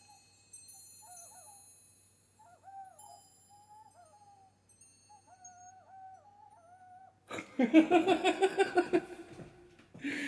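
An Aztec death whistle blasts a loud, harsh, rasping shriek that pulses rapidly for about three seconds, following a stretch of faint, wavering high tones.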